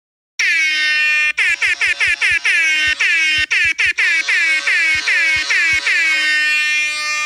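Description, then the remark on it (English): A loud, blaring rap-style air horn blasts in rapid stuttering bursts, repeated over and over with short gaps, then holds a long sustained honk at the end. No talking. “Well, as that rap air horn and that garbage scow are informing us, we got some natty bees in this issue.”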